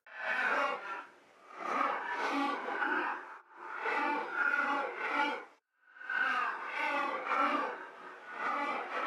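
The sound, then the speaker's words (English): Electronically altered deer calls form long, raspy, breathy bursts that swell and fade in a pulsing rhythm, with brief gaps between about four loud phrases and no talking. “Here are the deer sounds after I've manipulated them.”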